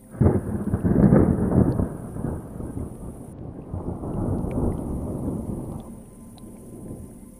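Deep, rolling thunder rumbles loudly, swelling early then trailing off into a long low growl, with a faint hiss like rain beneath it and no voices.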